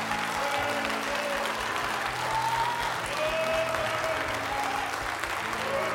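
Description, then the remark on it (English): A crowd claps steadily and densely for several seconds in praise of the Lord, a loud sustained wash of applause with faint tonal voices or organ-like notes humming underneath. “Could I get you to give the Lord a real big hand clap of praise for his glory?”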